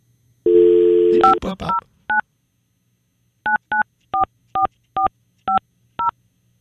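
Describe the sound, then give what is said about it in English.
A phone's dial tone hums for a moment, then cuts to touch-tone dialing: a quick cluster of beeps, a pause, and a steady run of about seven more evenly spaced keypad tones. “Is this phone not working? The number you have dialed is unallocated. It is? I felt like it was Kevin's number. Let's try it again.”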